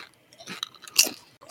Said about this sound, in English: You can't keep crunching. You're gonna gross everybody out. Okay. I'll finish my handful. The podcast is not for eating. Especially chips.